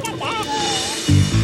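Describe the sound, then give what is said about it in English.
Chicken clucking sung to a tune by a group, Gonzo's chickens, from the newer Muppets movie: after a murmur of background noise, loud, pitched clucks burst in rhythmically near the end, voices mimicking hens carrying a melody. “I am pleased and proud to present those princesses of poultry, ….”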